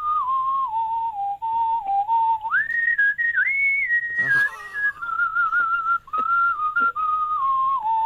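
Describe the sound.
A Grandmaster World Whistling Champion whistles a rock tune alone on The Dave Berry Breakfast Show. It is a clear, steady melodic line that glides between sustained notes, rising in pitch midway before settling back down, with a brief breathy burst partway through. It is made to sound like an Ennio Morricone western.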